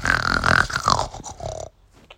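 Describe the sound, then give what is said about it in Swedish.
A single loud, rasping snore from a guard, harsh, drawn out for just under two seconds before breaking off into near silence. “Vakten snarkade till.”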